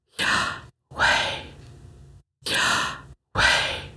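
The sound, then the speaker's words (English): A voice pronounces the letters YHWH without intervening vowels, imitating breathing with four drawn-out, airy aspirated breaths, alternating in and out with short silent gaps between them, fairly loud. “When pronounced without intervening vowels, it actually sounds like breathing.”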